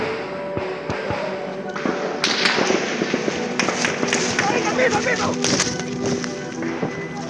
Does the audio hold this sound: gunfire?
yes